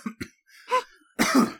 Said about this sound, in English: Oh, that cough was brought to you by me not editing these podcasts anymore.